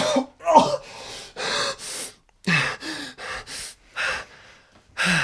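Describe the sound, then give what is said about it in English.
A person coughs and gasps for air in a rapid, ragged series of harsh bursts and sharp inhalations, fairly loud, with no talking. “…'s going to do the same and he just coughs.”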